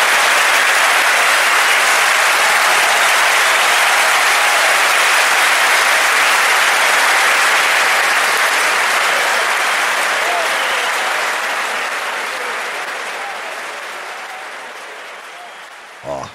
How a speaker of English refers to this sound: Can we, dude, you gotta add, can you add an applause to that? Just make it radio magic that.